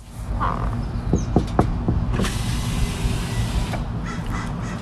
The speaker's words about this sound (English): I walked up to the car and knocked on the window.